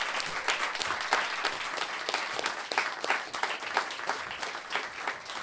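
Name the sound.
audience applause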